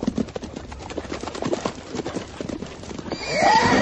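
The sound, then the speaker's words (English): Hooves clop in a steady, uneven rhythm on hard ground, and near the end a horse lets out a loud neigh that rises over the footsteps. “We'll walk the horses.”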